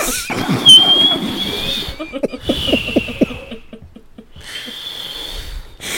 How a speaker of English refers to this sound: Yeah, blow my nose.